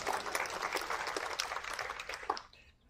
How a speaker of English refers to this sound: Keep kneeling, big round of applause.